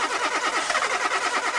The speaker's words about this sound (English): Keep that car start going